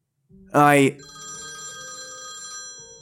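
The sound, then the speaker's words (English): A phone rings, opening with a loud, bright electronic burst that quickly settles into a steady, sustained ringing tone lasting a couple of seconds before cutting off. “My phone interjects, unhappy with my wandering, tired mind.”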